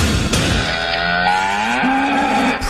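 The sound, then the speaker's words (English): A single long cow moo, loud, its low pitch sliding upward and holding steady before trailing off, with no other voices present. “Praise rolling in for this week's cow.”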